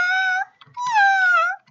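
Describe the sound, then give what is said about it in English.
A person imitates a cat with two drawn-out, wavering meows, the second longer and sliding downward in pitch, separated by a short pause. “That is a pretty good cat noise.”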